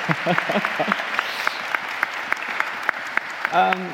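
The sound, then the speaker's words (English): Scattered applause from a small panel audience at Christ Church Cathedral in downtown Vancouver, a dense patter of claps carrying on steadily for several seconds, with a voice briefly speaking over it near the start and again at the end. “Have you all give a round of applause so people can hear that you're here?”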